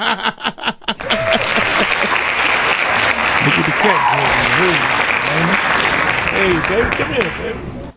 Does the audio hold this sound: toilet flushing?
no